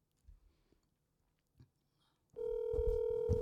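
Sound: telephone ringing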